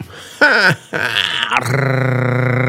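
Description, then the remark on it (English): A voice imitates a drum roll with a couple of strained, grunting bursts, then a loud, steady buzzing trill that rattles on at a low pitch until the end. “Are you doing a drum roll, or are you having a seizure next to a snare drum?”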